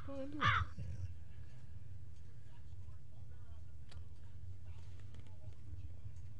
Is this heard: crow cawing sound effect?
yes